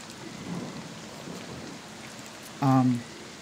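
Steady rain falls outside Argenvoss Holt in Barovia throughout with a soft, dense hiss of drops, and a short, loud tonal burst, like a brief voiced hum, cuts in near the end.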